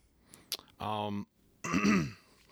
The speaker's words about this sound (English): Pardon, I had to clear my throat.